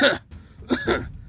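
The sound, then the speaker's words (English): A short bout of harsh, raspy coughing, a couple of rough bursts separated by a brief pause, with no talking. “Victoria let out a wicked laugh that was interrupted by another coughing fit.”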